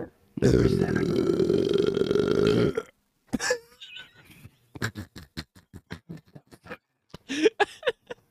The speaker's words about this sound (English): I need a burp.